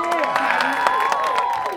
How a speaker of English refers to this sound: You guys can clap louder than that.